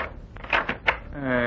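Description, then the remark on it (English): Three quick raps on a dressing room door at the Hot Box in a close, even rhythm, moderately loud, followed right away by a voice starting to speak. “I am in his dressing room when there is a knock at the door.”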